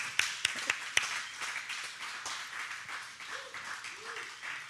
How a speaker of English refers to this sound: Yeah, maybe clap your hands for them. Yeah.